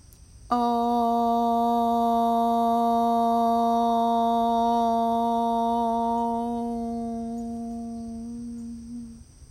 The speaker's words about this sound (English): We'll take a deep breath in and we'll say the tone Om for as long and as loud as we can. So hands right in the middle of your belly. Deep breath in.